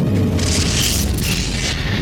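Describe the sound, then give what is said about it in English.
A loud, sustained explosive boom with deep rumbling low end and crackling, hissing high bursts that swell and fade across about two seconds, with no voices, as a lightning strike, a galvanic charge, hits a spaceship. “We've been hit by a galvanic charge!”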